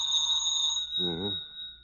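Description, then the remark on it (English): A telephone rings late at night, at 4 minutes after 11, with a steady, high-pitched bell tone that carries through the whole clip, while a short voiced murmur rises briefly in the middle. “Wouldn't want to lay a little bet why this phone's ringing at this time of night, would you?”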